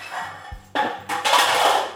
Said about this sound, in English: Herman just knocked a muffin tin off the counter.